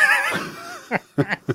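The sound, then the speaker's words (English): A dog retching on a carpet: a high, wavering whine gives way to four short, harsh heaving bursts in an uneven rhythm, with no talking. “Sorry, my dog's just spewed on the carpet.”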